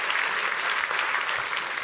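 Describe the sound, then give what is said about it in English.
A church audience claps their hands steadily, a dense, continuous wash of many hands with no single claps standing out, holding an even loudness throughout with no voices audible, celebrating the love of God. “Let's clap our hands, because the love of God is a part and apparent in this house today.”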